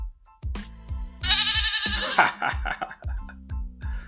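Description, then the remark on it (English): A loud, quavering goat bleat sound effect cuts in over a steady thumping bass beat, one drawn-out cry lasting about a second in the middle of the music, marking a Goat of the Week award. “And Miss Sanaya, she's going to get Goat of the Week.”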